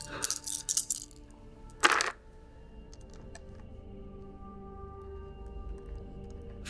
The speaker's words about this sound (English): How many distress dice do you roll? Four.